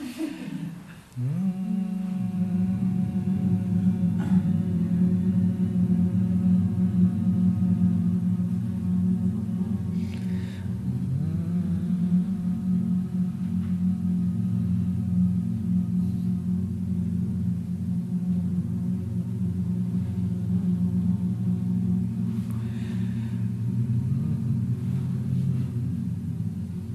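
A group of voices hums together, each on any pitch, like bees, in one long, steady drone, several low pitches layered into a thick buzzing chord that holds for nearly half a minute, with a brief dip and swell midway.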